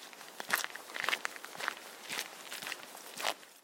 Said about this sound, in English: You'll notice things. The rustling of leaves, the rhythm of your footsteps. It's not just a walk, it's a journey into your inner world.